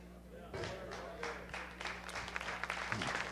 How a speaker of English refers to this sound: Y'all just quit clapping because the claps is just whack. Too many mad folks.